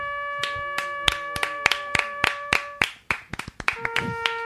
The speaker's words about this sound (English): We applaud.